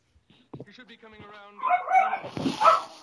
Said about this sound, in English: And there goes the dogs. Going nuts.